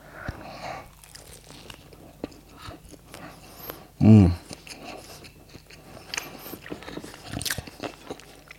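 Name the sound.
biting and chewing food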